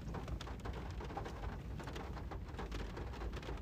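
A steady downpour of rain with a deep, rumbling roll of thunder underneath from big lightning strikes, continuous and fairly loud throughout, with no voices.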